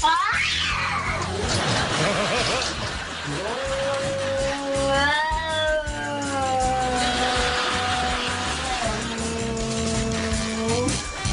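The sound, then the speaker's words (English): A black cat named Buddy yowls at his own reflection in a mirror in long, drawn-out, wavering cries that rise and fall, loud, over a low rumbling background with no one talking. “This is our sweet, loving cat before he finds himself in the mirror.”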